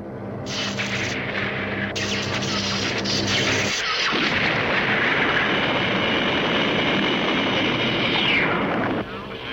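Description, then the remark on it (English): A loud, sustained explosion rumble, depicting an explosion that pushes the moon out of Earth's orbit: a droning, humming roar gives way to a dense, crackling wall of noise that holds steady for several seconds before cutting off abruptly. “The other clip from this first episode that I do want to play, though, is when this whole thing happens, when this explosion takes place and the moon is pushed out of Earth's orbit.”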